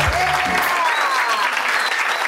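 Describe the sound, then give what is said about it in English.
A large crowd at a live recorded event roars, chanting along with cheering and clapping, a dense, loud wash of noise that holds steady for a couple of seconds with no clear individual voices standing out. “So that was the crowd saying it.”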